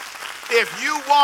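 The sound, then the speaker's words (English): An audience claps steadily in a dense, noisy patter, giving the Lord a big hand clap, while a voice rises in a drawn-out shout over the applause, which swells louder toward the end. “If I'm right, give the Lord a big shout and a big amen and a big hand clap.”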